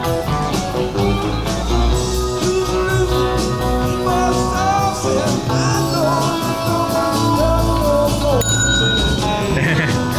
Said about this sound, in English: Are you holding the bell up to the microphone when you do it?